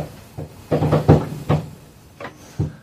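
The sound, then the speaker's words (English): Knocking on stairs in an irregular, Morse-code-like pattern: a series of dull, woody thumps, some single and some bunched close together, moderately loud with short pauses between them and no voices. “He's doing Morse code in the stairs.”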